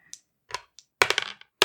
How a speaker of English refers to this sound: So, why don't you guys roll dice, and we'll see who we're doing first.